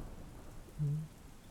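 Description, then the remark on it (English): Steady rain patters softly throughout, and a brief low rumble of distant thunder rolls through partway in, with no voices present. “In the far distance, in the northern reaches, way above Renrit, lightning begins to crack the sky.”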